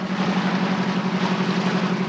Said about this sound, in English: And then, of course, there's the amphibious star of the show. Fans, you know the engine sound.